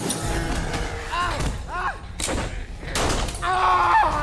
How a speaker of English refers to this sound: The pipe we were using to pry open the door got knocked down, and the full weight of the door and all the rubble pressing on it, well, there wasn't anything else between the door and my arm.